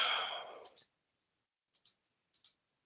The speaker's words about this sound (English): Clicking back and forth, you know.